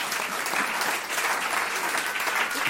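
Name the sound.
audience clapping hands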